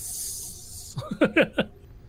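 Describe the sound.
A person mimics a snake with a steady, breathy hiss lasting about a second, then follows it with a few quick voiced syllables.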